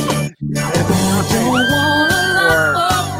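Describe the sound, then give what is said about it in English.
A shrill, high-pitched scream at a Halloween midnight event, as an ice vault is opened, rises sharply and holds for about a second, riding over loud, busy background music with a steady thumping beat. “Screaming was very high-pitched.”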